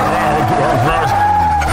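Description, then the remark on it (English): Car tires squeal loudly in one continuous, high-pitched screech lasting a couple of seconds, with an engine rumbling underneath as the car speeds away. “Next thing you knew, he was in his car, Smokey the Bear car, taking off.”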